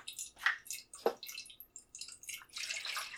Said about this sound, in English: All right, I've added the fixer, started the timer, and I'm agitating the fixer.